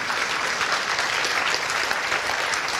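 A crowd applauds steadily, a dense wash of many hands clapping at once, fairly loud and continuous throughout with no voices rising above it.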